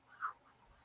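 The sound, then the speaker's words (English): A faint, brief squeak of a marker drawn across smooth Bristol paper, one short stroke. “It like glides across the paper really well.”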